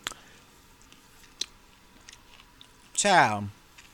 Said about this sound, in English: Oh, y'all, hold on, let me chew this right quick.